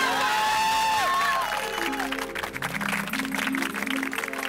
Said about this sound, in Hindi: बिल्कुल सब शिस्त में रहिए। अरे श्री अमिताभ बच्चन तालियां।